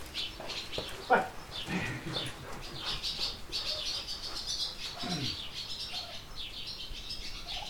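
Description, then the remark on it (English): A busy, steady chatter of barn swallows and house sparrows twittering, with occasional low rock pigeon coos and brief wing flutters mixed into the constant chirping inside a barn on a goat farm in Carluke, Ontario, in early July, during breeding season. “Barn swallows, house sparrows, rock pigeons. Each of these species might easily be found by visiting a barn during breeding season.”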